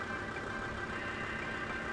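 Steady low rumble of car engines idling in stopped, bumper-to-bumper traffic, a continuous even drone with a faint tonal hum, no voices, moderately quiet throughout.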